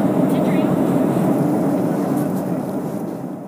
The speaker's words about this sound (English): I did record my favorite part on the plane, which is, we'll see if you can hear it. I know it might be kind of, it's hard to hear because you're on the plane, but see if you can hear it. This is my favorite part.